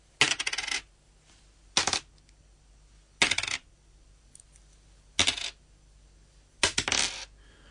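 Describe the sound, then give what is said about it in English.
Five coins bounced off a table one after another, five separate bright metallic clatters spaced irregularly, each ringing and skittering briefly before settling, with no talking. “Well, I'll bounce these off the table here.”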